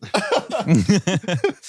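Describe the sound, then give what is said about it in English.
Heavy, rapid breathing with a rough voiced edge, heard over a headphone on a patched-through transmission: about seven quick gasping breaths in a steady rhythm, fairly loud and with no other talk. “Do you hear that breathing?”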